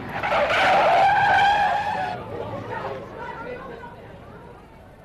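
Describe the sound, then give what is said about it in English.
A car that was accelerating brakes hard as a man runs into its path, its tires letting out a loud, wavering screech for about two seconds, then the sound breaks off into a rougher, fading rumble with muffled voices underneath. “Well, he ran straight into us, just as we were accelerating. I tried to stop him.”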